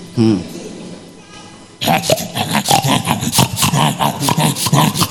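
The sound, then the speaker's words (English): A voice imitates a pig wallowing in its mire with a short, throaty grunt and snort near the start, followed by a pause, then loud, continuous talking fills the rest. “Or if how many of you have also seen the pig Prekuba wallowing in her mire.”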